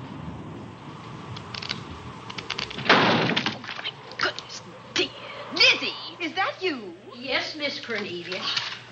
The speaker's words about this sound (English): The wind nearly blew the door off its hinges. Well, that noise blew my game higher than a kite.